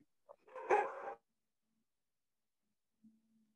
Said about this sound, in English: Your dogs clearly agree with me. Yes, they are barking in agreement. They're applauding.